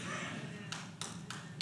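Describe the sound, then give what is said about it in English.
Four sharp hand claps land in a steady, evenly spaced rhythm, each a bright crisp smack over a low, continuous murmur of background noise. “Thank you, the one clap.”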